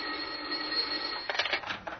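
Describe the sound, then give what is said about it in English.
A telephone on an inspector's desk rings with a bright, jangling bell, a steady trill that breaks into several quick, choppy bursts toward the end. No voices are heard. “It was just about then that the telephone on the inspector's desk added its voice to the situation.”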